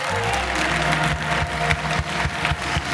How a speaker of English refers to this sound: I will not give unto the Lord that which cost me nothing. Anytime you clap and you don't feel pain in your hand, you are not clapping.